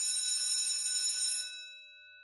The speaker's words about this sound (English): And that's our bell, but it's only our first bell, which means we have a little bit more time left for our extracurricular activity.